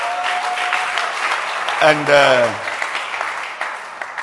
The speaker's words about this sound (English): I feel the clappers must clap again. Not right now. Soon I will end. If the time is up, you are rehearsing, so the clappers can clap also.